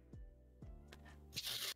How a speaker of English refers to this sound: But I do have a snack box right next to me, like literally right next to me. I can just pick up any kind of snack right now. Like you can hear me like rustling.